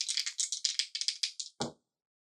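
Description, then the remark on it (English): Dice are gathered up after a roll, clattering in a quick series of bright, rattling shakes, fairly loud, ending in one fuller knock before silence. No one speaks. “Gathering my dice.”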